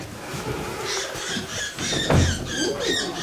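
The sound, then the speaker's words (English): Rapid, high-pitched squeaks and squeals from a small female downy woodpecker in distress as she is taken out of a bag and held by her feet for weighing, repeating in short bursts over a low rustling background, with no talking. “pulled a little downy woodpecker gently out of the bag and held her feet in one hand”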